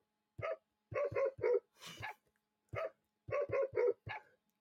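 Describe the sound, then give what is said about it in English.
Dog barks strung together into a tune, short bright yips in quick rhythmic bursts with pauses between phrases, like a melody played on bark sounds, loud with no talking. “Or you can play the dog version of it, which makes it even more funny.”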